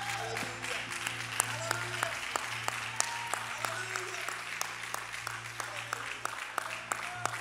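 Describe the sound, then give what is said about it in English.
A church audience claps their hands to the Lord in a sustained, dense burst of applause, with a few sharper individual claps standing out over a steady low hum. “Clap your hands one more time mightily to the Lord.”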